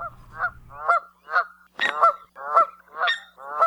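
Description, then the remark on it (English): A Canada goose honks repeatedly, about seven loud, nasal calls in a steady rhythm, clear, with a brief low rumble at the start. “Canada geese are very common birds native to North America, but are uncommon winter visitors in the Hawaiian Islands.”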